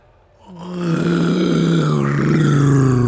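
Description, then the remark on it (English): A voice imitates the droning of Lancaster bomber engines: a loud, sustained, buzzing low hum that swells in after a brief quiet start and holds steady with a slight wavering pitch. “Lancaster Bomber. Hawker Typhoon. Ah. Yeah, Lancaster Bomber can't do four engines.”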